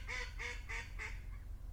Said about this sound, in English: That was an annoying little duck.